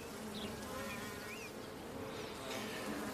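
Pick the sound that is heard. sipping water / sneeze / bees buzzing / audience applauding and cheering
bees buzzing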